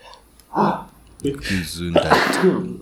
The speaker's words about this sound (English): Bless you.